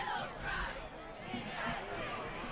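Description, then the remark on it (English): A football stadium crowd at Portage Central's regular season finale produces a steady, dense roar of mingled voices and chatter. The sound stays loud and even throughout, with no single voice standing out. “Good crowd here at Portage Central for this regular season finale.”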